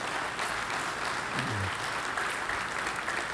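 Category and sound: crowd, audience clapping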